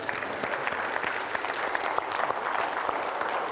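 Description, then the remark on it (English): A church audience claps steadily to celebrate that Jesus is not dead, a dense patter of many hands that holds at an even level without building into cheers, a little hesitant and uneven. “We can awkwardly clap, okay?”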